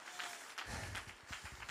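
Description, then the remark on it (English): An audience claps their hands in a dense, steady wash of applause, with fuller, heavier thumps joining in partway through, clapping if they feel God heard their repentance. “Come on, clap your hands if you feel like God heard your repentance.”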